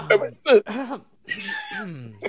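A single rough cough midway through, surrounded by brief murmured vocal sounds from the same person.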